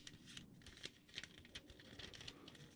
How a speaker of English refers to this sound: It's just one sheet. I just have everything printed on it very small. Oh, because it sounded like you were rubbing two paper airplanes together.